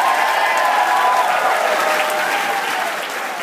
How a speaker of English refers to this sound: Let's have a round of applause for all of you.